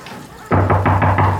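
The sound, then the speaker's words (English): Five firm knocks on a door in a quick, steady rhythm, loud, with low hollow thuds and no voices. “Why don't you answer the door? See who it is.”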